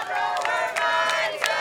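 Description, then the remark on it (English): Over 100 summer camp counselors cheer and shout in excitement, welcoming the first bus of arriving campers at Camp Sabra in Missouri's Lake of the Ozarks, a dense wall of overlapping voices with sharp whoops rising above it, loud and sustained throughout. “Over 100 counselors cheering and dancing and hugging and welcoming the kids.”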